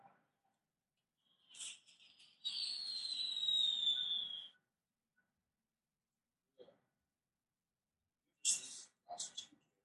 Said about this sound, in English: Fireworks.